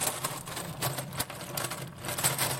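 A mechanical walking machine runs steadily, its motors whirring with a busy stream of quick, irregular clicks and ticks, fairly loud and continuous, with no voices.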